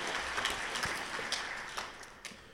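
Steady crowd applause at a Nebraska tour program, given for the tour's sponsor Syngenta, a dense wash of many hands clapping at an even moderate loudness, with a few sharper individual claps standing out, no voices.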